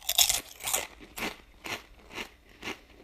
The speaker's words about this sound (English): And today, we'll be talking about the Lay's potato chip. I get a chip here and I crunch on it.